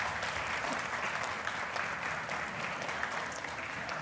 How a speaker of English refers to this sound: And so let's give her a round of applause